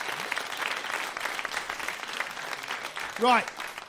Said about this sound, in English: So, a round of applause, everybody. Good work.